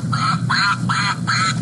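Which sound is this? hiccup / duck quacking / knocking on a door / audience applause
duck quacking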